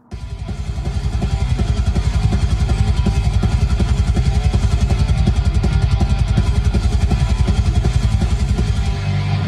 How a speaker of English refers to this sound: Great. There's some thrash metal playing.